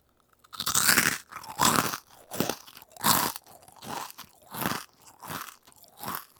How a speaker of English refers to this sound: here is … trying a crispy, crunchy, mochi rice nugget from Trader Joe's